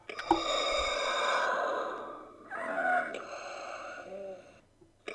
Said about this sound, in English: You look down, you can see where Vader's feeding tubes are, and if you push a button, you can hear breathing.